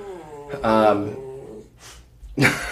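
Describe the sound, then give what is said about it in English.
A dog gives a short grumbling growl in the corner, a drawn-out rumbling vocalization followed by a brief pause, a soft huff, and a second rough burst. “He's kind of growling in the corner.”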